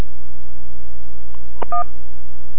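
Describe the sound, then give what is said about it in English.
A single short telephone keypad beep, preceded by a faint click, sounds clearly over a steady low electrical hum on a phone line during a call to an Internet technical support menu, with no voices. “If you're calling for technical support, press 1.”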